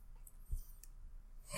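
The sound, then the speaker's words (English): Faint keyboard typing: a handful of soft, irregular key clicks tapping away quietly in the background, with no one speaking. “I hear typing. Min, why are you typing? That's very unprofessional.”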